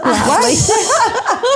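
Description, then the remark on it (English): A loud sneeze with a breathy hiss and strained, voiced vocal sounds that rise and fall over about a second and a half. “I sneezed.”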